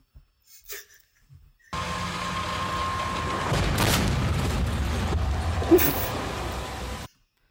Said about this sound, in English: But it's time for the last one. Here is your last car crash.